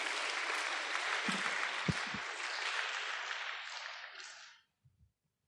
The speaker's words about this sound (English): Can we please give them a big round of applause and welcome them to the stage?